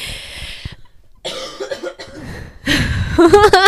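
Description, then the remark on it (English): A person coughs repeatedly, several harsh bursts in uneven succession with brief pauses, getting louder toward the end, with no talking over them. “sorry, I have to cough again.”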